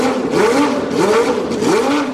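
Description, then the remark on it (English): A racing car engine revs loudly, its pitch sweeping up and down in three repeated surges with no voices over it. “Start your engines and buckle up.”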